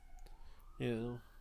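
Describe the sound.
An ambulance siren wails faintly outside, its steady tone slowly rising, while a brief burst of a voice cuts in partway through.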